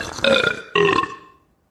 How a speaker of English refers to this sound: And in this version, this iteration, the boys, I think all three of them burp. Yeah. And Daisy says to Donald, what do you have to say about that? Or something like that. You know, she's not pleased. And Donald burps in response to her. More loudly.